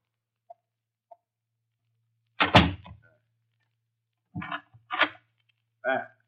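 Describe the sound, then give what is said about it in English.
A couple of faint clicks, then a door swings shut with a solid thunk, followed by a few short rattling clacks as the lock is turned. “I will close the door.”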